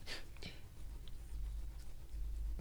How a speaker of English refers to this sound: I was erasing. Yeah, I was like, what is this noise?